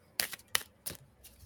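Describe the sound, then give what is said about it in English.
Three quick papery riffles of cards from the Seasons of the Witch Samhain Oracle deck being shuffled, each a short bright burst of rustle, spaced about a third of a second apart, fairly quiet with no talking. “I am shuffling as we speak.”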